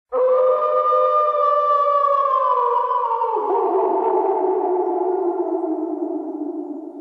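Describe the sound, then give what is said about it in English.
The Haunted Mansion ride howl: a long, eerie howling wail sustains for about seven seconds, loud and steady, its pitch sagging slowly downward, with no voices present. “I just remember every night I would just be out there with like my dad and we would just be sitting out there and we would just hear the, if I could find the Haunted Mansion howl, I'll put it in right here.”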